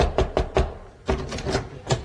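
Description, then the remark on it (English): Three sharp, evenly spaced knocks on the door of a private home, followed by a pause and a further scattering of duller raps and thuds with no voices. “Thou knocked, oh shivering white infidel, cor blimey.”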